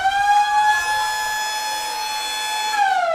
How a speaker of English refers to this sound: And we'll let the siren tell the tale.